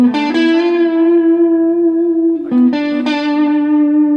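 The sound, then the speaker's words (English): A sustained electric guitar note rings out through a delay pedal effect, its repeats trailing off, then fresh picked notes around two and a half and three seconds echo and fade in the same way. “You get the tail end of that delay.”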